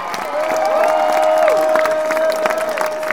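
A crowd bursts into loud, sustained applause with dense clapping, cheers and a long high whistle rising above the noise, filling the whole moment without letting up.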